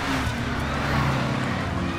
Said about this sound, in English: Who was that? More police? No. It seems like news vans.